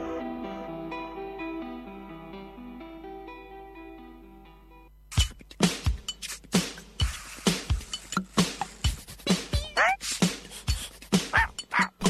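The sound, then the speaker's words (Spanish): A dog barks repeatedly in quick, sharp bursts after a few seconds of soft sustained music, the barks loud, some rising into yips and whimpers. “si suena el ladrido del perro de Duc Narinas, es que vengo yo con mi relato”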